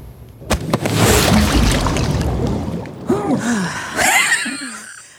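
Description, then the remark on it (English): A loud, rushing whoosh of water rises and drains away over a few seconds, like a toilet flushing, then gives way to several sharp vocal gasps and groans. “You already made a big mistake yourself. You didn't flush.”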